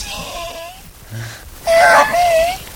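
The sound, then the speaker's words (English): A voice imitates a burning Joshua tree squealing: a thin, wavering whine early on, then a louder, strained squeal that slides and trails off in a long, steady high tone. “Do a great impression of a burning Joshua tree,”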